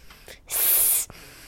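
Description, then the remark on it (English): A faint breath drawn in through the nose, then a loud, steady, bright hiss pushed out through the mouth for about half a second before it cuts off, as a female does a snake-breathing exercise with her fingers in her ears and eyes closed. No talking. “She's breathing in through her nose and then hissing out through her mouth.”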